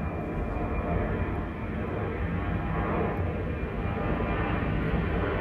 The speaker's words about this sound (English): Oh my God, as that plane flew by, I felt like the wind pick up and I felt like just this freshness coming out and about.